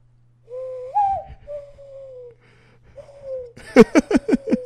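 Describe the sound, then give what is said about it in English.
A person mimics a bird call: a few drawn-out, hooting whistle tones, then a quick burst of about six sharp, chirping pulses, with a steady low hum underneath. “Did you do a bird call? Right now? Sure. I have to put, I can do like a little.”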